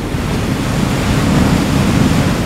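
A steady, broad wash of ocean surf rolls continuously, with a deep rumbling low end and a hissing spray on top. It's fairly loud and sustained throughout, with no voices.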